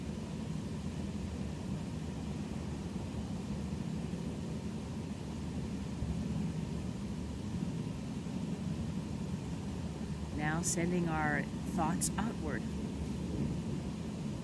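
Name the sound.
waterfall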